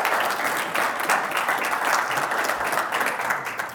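An audience claps together in sustained, dense applause, a steady wash of many hands at fairly even loudness with no voices standing out.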